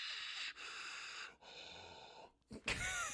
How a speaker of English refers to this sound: Heavy breathing into microphone, recording cuts.